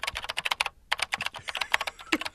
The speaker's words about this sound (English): Did you find it yet? No, I'm still typing.